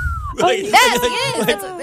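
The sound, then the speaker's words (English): A voice imitates R2-D2's chirpy, warbling wolf whistle: a quick series of loud, rising and falling electronic-sounding bleeps lasting about two seconds, with no other talk. “And the fucked up thing with R2-D2 is he is a human wolf whistle.”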